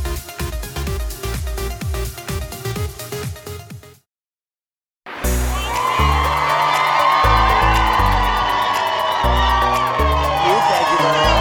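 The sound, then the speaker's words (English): A rhythmic music track plays, cuts to a second of silence, then a massive Friday morning holiday crowd at a toy drive collecting donations roars and cheers with whoops over a steady, pulsing beat, loud and continuous to the end. “We are back at 8:30 with a massive Friday morning holiday crowd and a big start collecting donations.”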